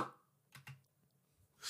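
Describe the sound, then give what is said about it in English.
A Tupperware container lid pops off with two quick, sharp snaps in succession, followed by a brief rush of hissy noise at the very end. Fairly quiet, with no talking. “Get that Tupperware. Thirsty. You know what it sounds like when you take the top off?”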